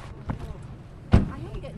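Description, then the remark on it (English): A single solid thunk of a car door closing as a person climbs out at Quadrilla Resources' exploratory shale gas well site near Blackpool, Britain, standing out above quiet background rustling and faint murmuring voices. “climbs out of the car and looks out over the well site.”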